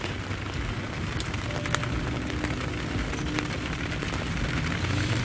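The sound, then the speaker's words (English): Steady, dense rain hiss with scattered crackling drops pattering on a surface, recorded out in the rain with the recorder under a glass table, holding an even loudness for the whole stretch, with no voices. “Rainy Day”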